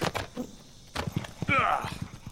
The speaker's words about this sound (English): Thrown by your own horse.